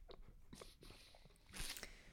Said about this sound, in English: Slurp alert. Slurp alert.